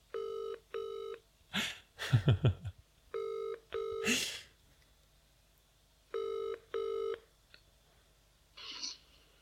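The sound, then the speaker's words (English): An outgoing-call ringback tone sounds in clear double pulses, repeating three times at steady intervals, with a few brief clicks and handling noises between the rings. “It's ringing.”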